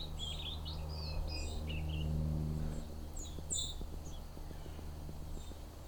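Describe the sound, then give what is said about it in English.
An immature, juvenile sparrow practicing its song in scattered, halting chirps and short high twitters, over a steady low rumble with faint intermittent ticking. “This one actually looks like it may be a juvenile learning its song, an immature bird.”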